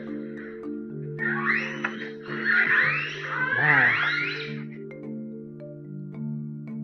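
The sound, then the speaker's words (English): Orca vocalizations: a burst of high, sweeping squeals and whistles that rise and fall for a few seconds, layered over a steady low humming tone that continues before and after. “Here's some more sounds, boys and girls.”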